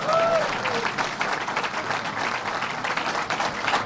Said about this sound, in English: This is a $1 billion investment that is being made today. It's going to create thousands of jobs. But to me, give $1 billion a round of applause.